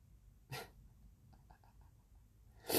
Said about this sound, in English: Oh, I was sniffing because I have sinuses, not because I have a COVID sensitivity.